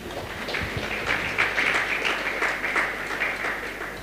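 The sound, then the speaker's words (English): A church audience claps and applauds steadily for Jesus for several seconds, a dense wash of many hands with no single rhythm, fairly loud and even throughout. “Church, say amen and clap your hands for Jesus.”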